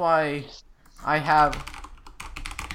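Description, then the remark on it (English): Rapid clicking of a computer mouse and mechanical keyboard fills the second half, a quick irregular patter of sharp taps as someone practices jitter clicking, following two brief wordless vocal sounds. “I'll stop clicking my mouse.”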